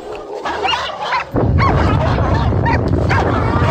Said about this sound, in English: Dang, he got ate up by the dogs and we blew him up?